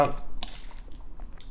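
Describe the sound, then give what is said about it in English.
Soft handling noises of a water bottle: a few small plastic clicks and squishes with a faint watery slosh, scattered irregularly over a second or so. “people who, when they were single, couldn't even figure out this water bottle. Like, what do you? Is there a button?”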